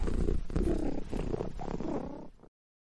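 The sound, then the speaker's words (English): A cat purrs, a steady low rumbling with a pulsing rhythm that lasts a couple of seconds and then cuts off abruptly into silence. “Round up them kitties. Yeah. Come on, kitties. Aw, ain't you cute?”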